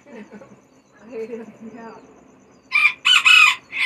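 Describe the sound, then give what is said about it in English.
Soft murmured talking gives way to two or three loud, harsh chicken squawks in quick succession, bright and raspy, cutting off abruptly near the end. “Hi, chicky girl, you're so cute.”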